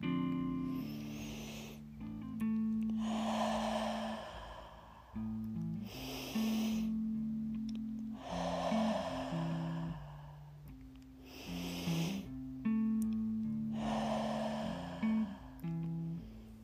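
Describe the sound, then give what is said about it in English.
Slow, deep breaths repeat in a steady cycle, each long airy inhale through the nose followed by a whooshing exhale through the mouth, clear over soft sustained background music. “Inhalation, cleansing through the nose. Exhalation, releasing any stress or worry through the mouth.”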